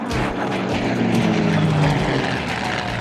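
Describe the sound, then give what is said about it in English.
Propeller airplane engines drone steadily and loudly, a continuous low throbbing hum with a slight rising pitch, filling the whole moment without any voices. “Are those two planes still on our tail, Madeline?”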